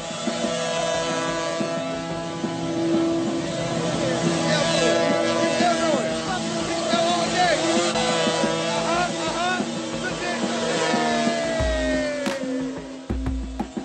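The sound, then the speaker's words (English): A motorcycle engine is revved as hard as possible, loud, its pitch climbing and dropping in repeated surges, with a steady throaty roar throughout and heavy low thumps near the end, as the bike slowly spins doing donuts, tires smoking against the asphalt. “So he started revving his engine as hard as possible.”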